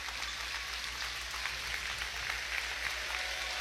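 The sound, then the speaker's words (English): Steady crowd applause at a basketball game during a timeout called by the Comets, a dense wash of clapping that holds at an even level for a few seconds with no speech over it. “Have a good hand.”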